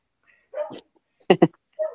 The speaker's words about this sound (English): My dog is loose in his fucking mind. Sorry. He just wants to be on the show. I think he wants to go out,